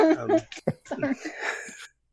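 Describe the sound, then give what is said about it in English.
A sneeze: a short voiced build-up, a sharp explosive burst, then a breathy, hissing exhale that trails off into silence. No words are spoken. “Oh, hi, sneeze.”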